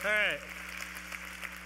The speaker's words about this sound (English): So let's practice once. Just go ahead and clap and get it out of your system. Yeah, that's it.